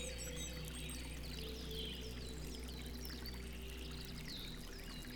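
A steady stream burbles and splashes over rocks, a continuous wash of running water with birds chirping faintly throughout.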